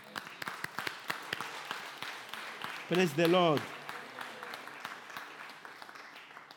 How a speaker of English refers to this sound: Let's applaud him.